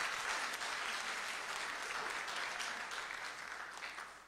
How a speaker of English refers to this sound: Let's give this praise team a hand clap this morning. Good job, guys.